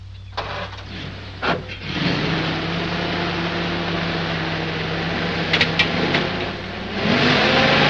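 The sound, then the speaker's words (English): A car engine starts with a few clunks, then revs and holds a steady droning hum that swells louder near the end as the vehicle pulls away. “Ain't that your car?”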